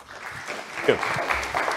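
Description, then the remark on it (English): A crowd claps in steady, dense applause as a speaker is called up, a bright crackling wash of many hands that holds at an even level throughout, with a faint voice briefly rising within it. “Don't applaud now.”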